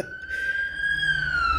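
A loud, steady siren wails on its own, its pitch drifting slowly upward and then dipping slightly near the end, over a low rumbling background.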